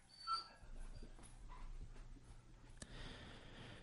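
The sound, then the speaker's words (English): The dog Marty, scared by thunder, whimpers softly, with a brief high whine near the start and fainter whimpers after, over a low, steady background rumble. No one speaks. “That's Marty, our dog, in the background.”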